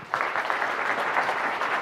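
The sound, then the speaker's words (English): An audience breaks into steady applause welcoming Senator Murkowski to the podium; it starts abruptly and holds at an even level, a dense, continuous patter of many hands clapping with no voices on top. “So, with your applause, will you please join me in welcoming Senator Murkowski to the podium.”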